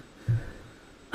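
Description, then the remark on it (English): A short, low grunt-like burst, then a pause and a sudden loud, noisy sneeze that cuts off at the very end. No talking. “Oh, excuse me. Bless you.”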